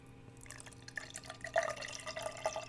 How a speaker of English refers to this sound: So before we get going, I'm going to pour a stiff drink here, a nice Guinness.